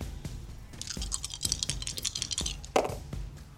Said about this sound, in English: I just rolled all the d20s at the same time. I hope that was okay. Please do that more often.